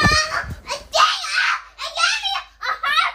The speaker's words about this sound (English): My daughter is a mess, you guys. She's screaming, so just ignore her. She does what she do at night to try to get her way. She screams and acts crazy.